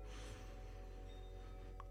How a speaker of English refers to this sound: So I want to take a moment to focus on breathing. Let's take 3 deep breaths together to center ourselves. In.